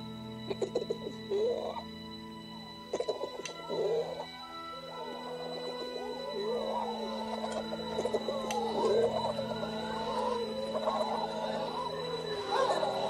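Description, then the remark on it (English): A chorus of low, throaty pigeon-like cooing made by the Wolfen, wolf creatures in a film, warbling and overlapping almost continuously over a steady hum, with a few sharp clicks near the start. “And then they all make pigeon noises.”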